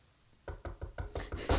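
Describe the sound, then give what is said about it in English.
A person knocking on wood for luck: a rapid series of about seven sharp knuckle knocks on wood, growing louder and quicker toward the end after a brief quiet start. “Nothing, knock on fucking wood.”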